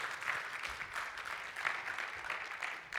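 A crowd claps steadily for a few seconds, a dense, even patter of many hands with no pause or build, at moderate loudness.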